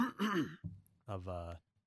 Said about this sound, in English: moment of clearing my throat there.